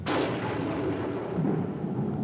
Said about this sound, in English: Air coming in off the Indian Ocean, spiraling in over the continent, banging into the Tibetan Plateau, being forced to ascend, producing violent thunderstorms along the face of the plateau.